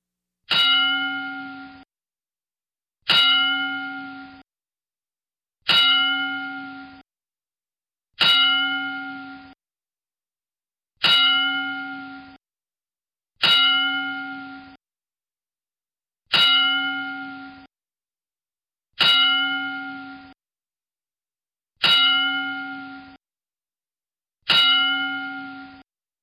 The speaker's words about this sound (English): So, Droz, Darren Drozdov, we remember you and pay tribute to you with a 10-bell salute.